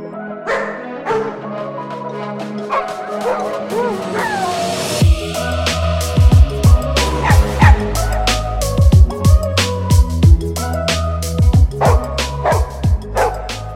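dog barking and yipping

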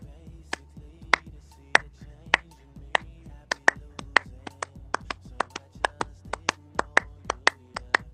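rhythmic hand clapping

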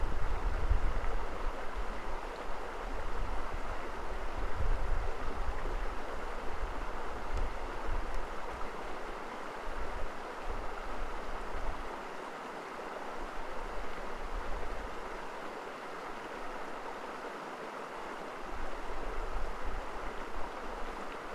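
flowing river water

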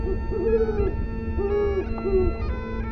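owl hooting

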